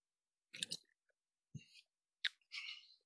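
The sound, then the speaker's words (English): A few short, quiet slurping sips of sparkling wine from a glass, with small wet mouth clicks and a soft airy hiss between them, and no talking. “So we're going to take a sip.”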